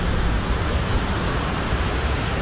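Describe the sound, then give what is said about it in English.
A steady, dense roar of fast-flowing floodwater in the Murray River in Victoria, Australia fills the scene, loud and continuous, like a swollen river surging past with no pauses or voices. “And the Murray hasn't even peaked yet. Look how fast it's going.”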